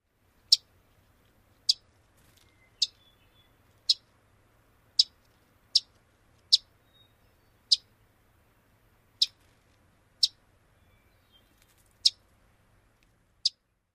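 A small bird, a Wilson's warbler, gives sharp, kissing chip call notes, about a dozen spaced irregularly roughly a second apart, loud against a quiet background.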